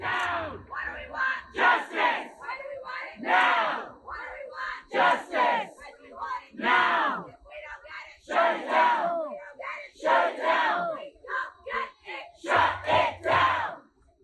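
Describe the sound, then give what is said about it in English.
A crowd of about 150 protesters chants in unison in the street in front of the Ithaca City Courthouse, blocking traffic during a demonstration and die-in. Loud rhythmic bursts of many voices rise and fall in repeated phrases, with a low rumble underneath at moments. “Protesters occupied the street, blocking traffic from passing right in front of the courthouse.”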